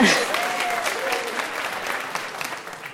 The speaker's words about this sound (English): Yeah, okay. We'll clap for that. You can clap for that, yes.